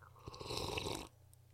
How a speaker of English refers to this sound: And then you've got the, like, what I just did, which was like, it sounded like I was gurgling, like, just like...